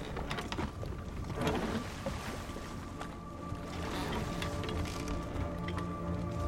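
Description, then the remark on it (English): A small boat churns steadily through water toward cliffs, its engine hum and splashing wash blending into a continuous rumble with brief sloshing bursts and no voices. “This is as close as we can get a boat.”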